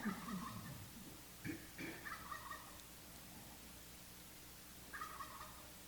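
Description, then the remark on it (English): Turkeys gobble in several rapid, warbling bursts, one near the start, a couple around the middle and another toward the end, moderately loud over a faint steady background hiss. “The turkeys.”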